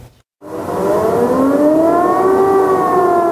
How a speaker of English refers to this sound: Air raid sirens ring over Ukraine's capital at dusk after another day of shelling.